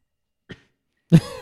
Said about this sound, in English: did the coughing and hacking on the first one. But after that, it went down like water.